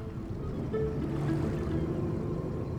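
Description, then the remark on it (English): A small borrowed motor launch chugs steadily on the water in a harbour at dawn, shrouded in mist, carrying Lionel Crabbe and Frankie Franklin into the dockyard; its low engine drone hums at a constant level with a faint wash of water and wind around it; no one speaks. “He helped Crabbe into the dockyard and he had borrowed a launch.”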